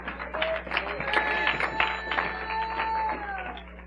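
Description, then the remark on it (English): An audience claps hands in praise of the Lord in a dense, steady burst of applause lasting several seconds, with indistinct voices and sustained tones rising over the clatter of many hands. “Give the Lord a hand clap of praise here today.”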